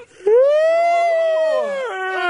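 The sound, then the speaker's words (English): A loud, drawn-out exaggerated yawn, voiced and tonal, sliding up in pitch and holding steady for over a second before dropping and trailing off into a short second breathy note. “Exaggerated yawning is really on the list.”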